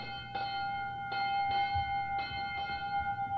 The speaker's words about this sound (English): Well, there's the bell, children, and that means that school is over for today.